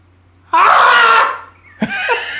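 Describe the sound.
A person lets out a long, loud, strained scream imitating a Bigfoot call, held for about a second before trailing off, followed by a brief gasp and rough vocal noise.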